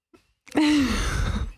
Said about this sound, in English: I think that sneeze was so loud. What did I need to say? That it got a dog to bark.